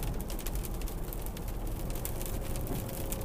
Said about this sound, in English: Obviously, it's raining. It's raining hard. So, I'll try just talking louder.